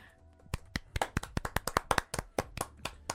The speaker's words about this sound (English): Everybody, give a round of applause for her turning 40.